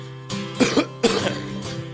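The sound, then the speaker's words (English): A series of about four harsh, raspy coughs in quick succession, fairly loud, with no talking around them. “Lying in the arms of the good Lord coughing, I'll have to put this cigarette out.”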